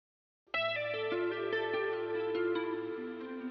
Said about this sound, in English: A dial tone echoes faintly through the atrium.